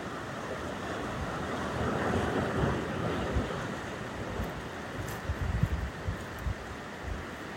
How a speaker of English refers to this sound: And I'm about 90 feet above the sea below, which you can hear sort of fairly gently actually, but quite noisily rolling into the cliffs and the coves below me.